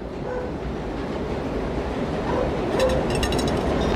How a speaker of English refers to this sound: Subway. It'll go away in a minute.